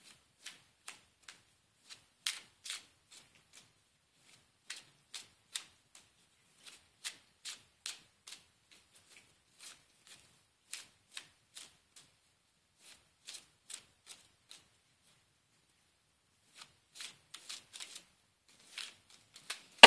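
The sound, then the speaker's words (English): A deck of cards being shuffled for a card reading, heard as quiet, crisp clicks and light snaps in irregular bursts and clusters, with no talking. “I'm going to shuffle the deck.”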